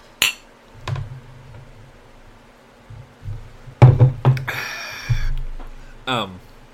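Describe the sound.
Glasses clink together several times in a toast, sharp bright taps with one brief ringing tone, over low murmuring voices and table noise.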